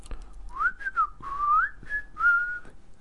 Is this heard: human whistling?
yes